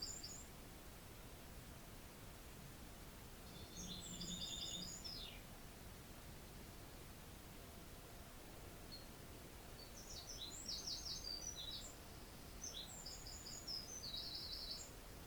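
Birds chirp and sing in short bursts of high, twittering notes over a steady wash of outdoor noise, one phrase early on and several more clustered toward the end.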